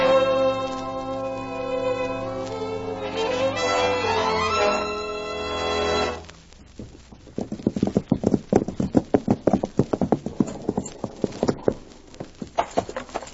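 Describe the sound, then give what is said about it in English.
A swell of music fades out after about six seconds, giving way to steady horse hooves clip-clopping, a quick uneven rhythm of sharp knocks that continues to the end. “Sure seems a lot of horses tied up at the ranch house.”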